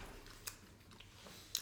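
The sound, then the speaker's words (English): Quiet, moist chewing of spicy cuttlefish jerky, with a few soft sticky clicks and smacks at irregular moments over a low hiss, and no talking. “And it doesn't, you can chew as much as you want, it never goes away.”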